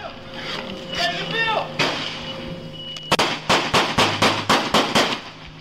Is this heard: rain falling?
no